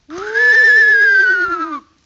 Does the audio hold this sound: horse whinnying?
yes